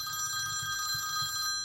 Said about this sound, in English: Oh, 1 second, my phone is ringing.